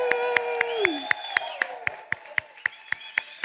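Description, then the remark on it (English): Sharp claps of applause as a woman walks down a red carpet land in a steady, even rhythm, about four per second, over a sustained tonal voice or music that glides downward early on. “So as she walks down the red carpet, let's thank God for her and give a big applause.”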